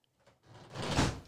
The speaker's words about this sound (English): Hey, can you shut that door?